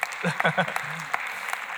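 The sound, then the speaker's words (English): An audience claps for their last open baptism service in a brief, dense patter of many hands, steady and moderately loud, with a voice briefly speaking over the start of the applause. “Yeah, you can clap for it.”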